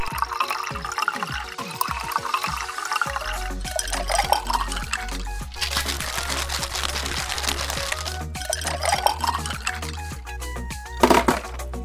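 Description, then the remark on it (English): Liquid pours out in a steady splashing stream for several seconds, over a rhythmic background with low tones and a few clinks. “Why'd you pour it out?”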